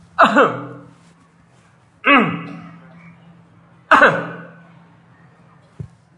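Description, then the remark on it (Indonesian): A man deliberately clears his throat three times, about two seconds apart, each a loud voiced rasp that rings out with reverberation, followed by a faint tap at the end. “Kesalahannya para makmum, attanahnuhu fis shalah ta'ammudan min ghairi udhrin wala darurah. Tanahnuh. Apa arti tanahnuh para jamaah?”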